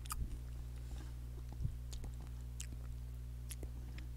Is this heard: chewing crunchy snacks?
yes